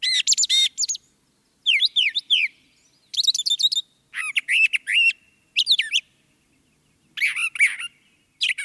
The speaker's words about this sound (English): And finally, the brown thrasher.